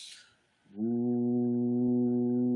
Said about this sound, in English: Ooh. And so the humming also really activates the rest and digest system.